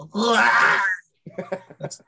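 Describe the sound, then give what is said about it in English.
A voice imitates a Wendigo's shrieking call: one loud, sustained, wavering high wail lasting under a second, then a short burst of speech-like vocal sounds. “The Wendigo shrieks, actually.”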